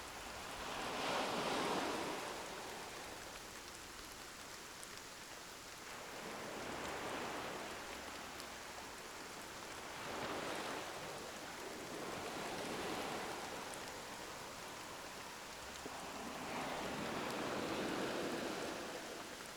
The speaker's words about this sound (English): You close your eyes, and before long, the hypnotic sound of the rain and the soothing sound of the waves lull you to sleep.